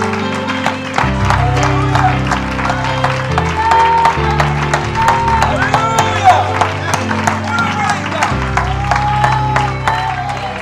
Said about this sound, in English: Now give him a hand clap and shout of praise.